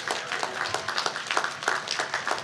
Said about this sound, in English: Before we conclude, I want to applaud the faculty and staff that have worked tirelessly to prepare the next generation of leaders. Let's applaud, let's give it up.